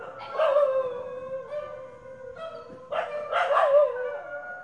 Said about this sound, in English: At night, when the big dogs fight, Chutney joined the chorus, but from the safety of our garden.